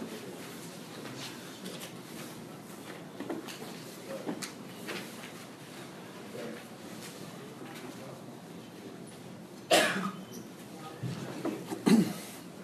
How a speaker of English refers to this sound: I'll try to close that door in the back. So it feels more exclusive.